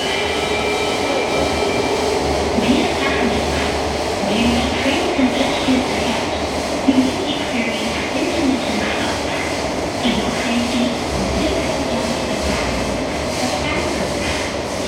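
A train rumbles steadily at a station platform, a loud, continuous mechanical drone with a faint metallic whine riding on top, never pausing for the full length.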